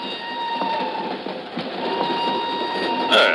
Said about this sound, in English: An hour later, she's aboard a northbound train rolling out of Lisbon. I'm in the same car a few seats away.